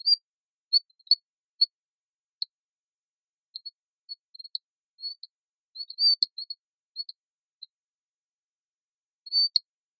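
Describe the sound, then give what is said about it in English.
A series of short, high-pitched chirps and tweets sounding much like a bird, a frog calling in irregular bursts with brief pauses, fairly clear against a silent background with no talking. “So in scientific terms, it's got a hyperextended vocal repertoire.”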